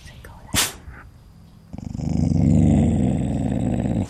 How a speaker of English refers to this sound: A couple of hours later, laying in my tent listening to the night sounds, my dog started growling.